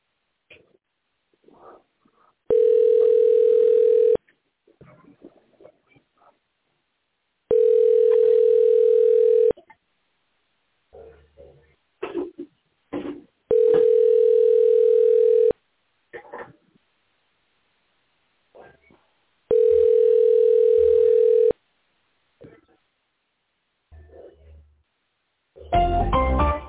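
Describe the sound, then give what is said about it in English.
An outgoing phone call rings out in four steady, evenly spaced tones about two seconds each, with short pauses and faint handling noises between them, ending in a louder burst. “Be quiet here because I'm going to make a phone call out.”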